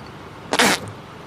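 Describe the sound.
A ketchup bottle, squeezed onto a hot dog at lunch outside on a patio, squirts out in one short, loud spluttering burst with a farting sound, splattering all over, a hissy splat lasting about a quarter second before quiet returns. Nobody speaks.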